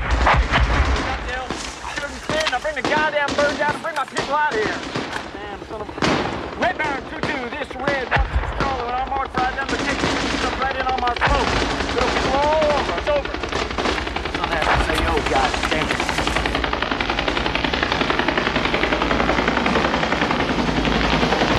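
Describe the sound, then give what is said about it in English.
Loud, dense film battle scene of a firefight in the Ajar Valley: rapid bursts of gunfire crack over the constant roar of a rescue helicopter, with urgent shouting voices of soldiers from the 101st Airborne Division mixed in throughout. “you've got a battle in the Ajar Valley with … in a firefight”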